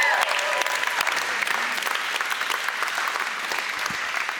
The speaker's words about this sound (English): And if you went on the trip this past week, could you guys stand up if you went on the trip? Check it out, give them a little round of applause.